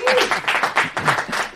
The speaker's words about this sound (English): Round of applause. There you go.